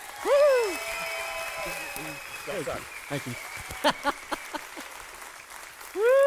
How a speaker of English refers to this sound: So here's what I need you to do. I need you to, even if you're online, shout out, clap, all the emojis, whatever you got to do, I need you to give a proper Cape Christian welcome to my friend and yours from World Vision,